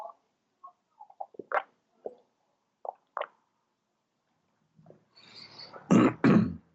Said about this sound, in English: Let me have a sip of my wonderful ginger tea.